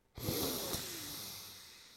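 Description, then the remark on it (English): A deep breath in and out: a sudden airy rush of air that holds steady and then slowly tapers off, with no talking. “Deep breath in. Deep breath out.”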